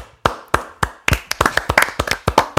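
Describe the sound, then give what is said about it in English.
A short round of applause for the moment in the show Flavor of Love when Pumpkin spat on New York: sharp, crisp hand claps from just a few people, starting sparse and quickening into a brisk, uneven patter, fairly loud with no talking. “Wait, before we go into the game, could we just get a round of applause for when Pumpkin spit on New York in Flavor of Love?”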